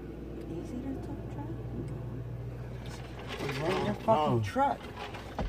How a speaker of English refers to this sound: Truck.